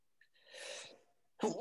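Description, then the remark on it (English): A single loud sneeze: a breathy intake of air builds up first, then a sharp voiced burst erupts at the very end. “Bless you. Bless you. Thank you.”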